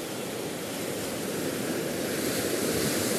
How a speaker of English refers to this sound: And then you sit at a beautiful picnic table with a peace sign carved into the top and the words, the woods, and you watch the waves and you see that they constantly break.